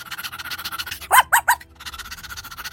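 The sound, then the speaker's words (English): A Cocker Spaniel lets out three quick, sharp barks, loud against a soft, steady rhythmic background that continues before and after. “she was kind to the neighbor's dog, Gretchen, giving the Cocker Spaniel extra food and pets”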